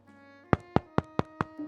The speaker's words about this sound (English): We'll say that no one's on the phone here, and you get a knock at the door.